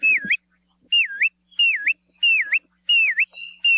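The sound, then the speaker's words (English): A bristle-thighed curlew (kioea) gives a whistling call: five clear, loud whistles in steady succession, each swooping down and back up in pitch, with no voices. “If you see a bird near the shore with a really long, downward-curved bill, with a call that's been described as sounding like whistles of an adoring pursuer, you're probably looking at a kioea.”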